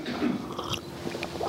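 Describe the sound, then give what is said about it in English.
Someone takes a sip of water from a glass, a few quiet wet mouth and swallowing sounds over soft background hiss, with no talking. “In fact, I'll tell you a little story after I have a glass, just a sip of water.”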